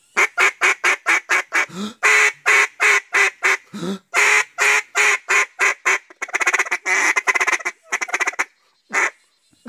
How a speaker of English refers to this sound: Duck calls. Got them on sale, because the guy at the hunting shop said, these duck calls don't work so good, because the ducks get wise to it pretty quick.